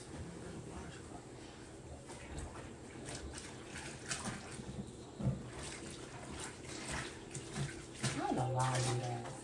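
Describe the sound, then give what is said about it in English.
Water gushes steadily into a washing machine drum before the clothes are put in, a continuous hiss and rush that swells slightly louder near the end, with a faint low hum joining in. “I let the water run first, then I put the clothes in.”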